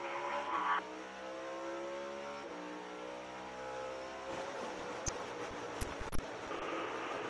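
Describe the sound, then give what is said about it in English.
A race car engine screams from Ross Chastain's in-car camera, its pitch climbing and dropping through quick gear changes, then turning into a rougher roar punctuated by a few sharp knocks near the end. “But I want to go on board and hear Ross Chastain's in-car camera and then also some driver reaction in-car immediately when it happened.”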